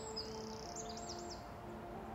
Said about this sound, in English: Why can't those birds running around in front of the cow's house not fly? Are they hurt? They are chickens, and they can't fly. They just run around the farmyard, and sometimes they give us some eggs to eat for breakfast.